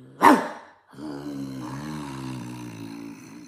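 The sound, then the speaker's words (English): A person imitates a growling dog: a short breathy burst, then a sustained low, rough vocal growl lasting about two and a half seconds, fairly loud. “So we've both, she's been a pussy and she's been a growler.”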